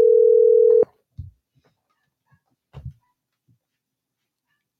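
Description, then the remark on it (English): A loud, steady telephone ring tone, placing a call to a caller, plays for under a second, followed by quiet pauses with a few faint low thumps, then the tone begins again right at the end. “we're going to get him on the phone right now.”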